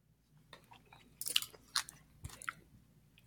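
Someone bites into and chews food with habanero hot sauce, with a few crisp, crunchy bursts at irregular intervals rising out of a quiet background, then softer chewing noises. No one speaks.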